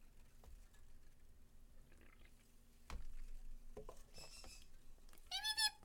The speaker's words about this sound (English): That's my bird. One of my birds. That's Feep.